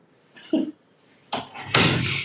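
A door closes: a soft clunk of the latch, a short pause, then a louder rush and solid shutting thud that lingers briefly. No one speaks.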